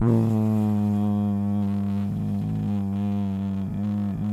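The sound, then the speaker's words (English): A voice imitates the drone heard inside an airplane cabin with headphones out, a steady, low, buzzing hum held for about four seconds. The pitch wavers briefly a couple of times, and no words are spoken. “constant buzzing. That's what a plane is.”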